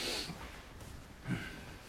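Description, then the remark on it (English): Two short nasal sniffs from a person whose sinuses are acting up in very cold weather, one at the start and another a second later, breathy and hissy, fairly quiet, with no talking around them. “I'm sorry about the sniffling.”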